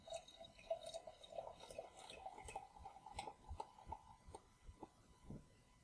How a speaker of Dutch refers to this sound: En het is een kurk. Dus het klinkt vast heel lekker op. Gaat hij ook mooi schenken?